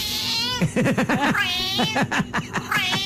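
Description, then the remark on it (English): A cat meows repeatedly, a run of drawn-out, warbling, rising and falling cries with short pauses between them, loud and clear with no talking; the meows are likened to a Scouse (Liverpool) accent. “Okay, so that's a Scouse cat.”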